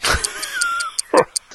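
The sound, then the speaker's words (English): The Doom Clock ticking: a quick, steady run of light, high-pitched ticks, about five per second. A brief louder burst of sound cuts in near the start and again toward the end. “Anyway, is that ticking that I hear over there behind you”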